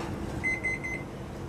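An oven timer goes off in a kitchen where gingerbread is baking, a quick run of about five high, electronic beeps that blur into one half-second burst over a low, steady background hum. No one speaks.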